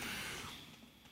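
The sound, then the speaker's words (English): A single soft, airy sniff as a woman takes a second sniff of a casino-tasting drink: a breathy inhaled hiss that starts strongest and fades over about a second, with no talking. “She went in for a second sniff, which is the weirdest part of this whole scenario.”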